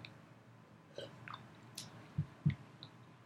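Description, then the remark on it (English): Quiet wet mouth noises as someone swishes a sip of water around to clear the palate before tasting an Oreo, with soft squishy sloshes and a couple of low gulping thumps near the end, no talking. “Did you swish it around like we're doing a wine tasting or something?”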